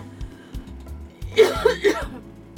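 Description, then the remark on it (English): A person coughs three times in quick succession, fairly loud, over a low steady background hum; nobody speaks. “Wiping this and coughing into that.”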